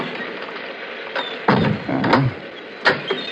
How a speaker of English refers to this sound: This key is supposed to fit this door.